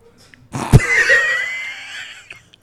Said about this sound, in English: So, if you guys heard a little sneeze, we got somebody in the building today.